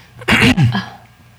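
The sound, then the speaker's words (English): A single loud nagging cough, a harsh burst followed right after by a second rougher hack, then quiet. “It's like you've heard me half the night tonight nagging fucking cough.”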